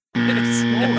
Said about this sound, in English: Hold the buzzer down. Hold the buzzer down, dude.